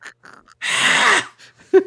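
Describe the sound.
A voice imitates heavy breathing: a few short breathy huffs, then one long, loud rasping exhale, ending in a brief, sharp voiced groan.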